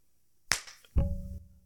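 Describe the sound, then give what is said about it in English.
A hand smacks the microphone: a sharp slap, then half a second later a loud, boomy thump with a short ringing hum afterward. Loud, with no talking. “did you hit the microphone? I did.”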